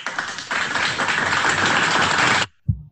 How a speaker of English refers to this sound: And this is a couple that really deserves an applause.